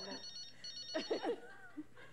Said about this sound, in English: Oh, the phone is ringing. I certainly hope that somebody calling to tell you to go home.